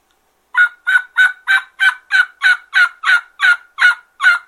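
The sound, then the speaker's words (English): A reed mouth call imitates a turkey with a steady run of about twelve raspy yelps, evenly spaced and fairly loud, each note carrying a buzzy, reedy edge; the rasp comes from dropping the tongue off the pressure so the top reeds vibrate. No one talks over it. “the rasp is created when you drop your tongue off the pressure, and that allows those top reeds to activate and vibrate.”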